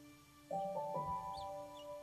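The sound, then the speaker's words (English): Quiet forest ambience: a soft, steady tonal background with a few brief, high-pitched bird chirps scattered through it. No one speaks. “Take a moment to look around and really listen to the sounds of the forest.”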